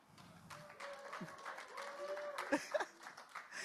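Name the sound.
audience clapping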